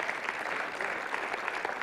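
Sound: audience hand clapping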